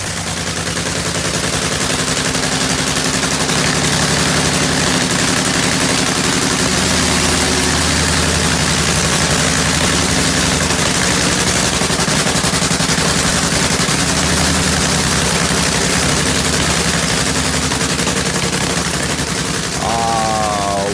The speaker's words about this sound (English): Sound that is the sound of a nitro funny car warm up. Can you smell it? The nitro methane, isn't it wonderful?